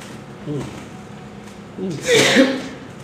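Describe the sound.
A single sharp sneeze bursts out loud, a quick voiced intake followed by a hissy, airy blast. Brief murmuring voices come just before it.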